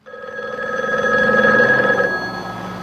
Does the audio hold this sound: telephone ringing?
yes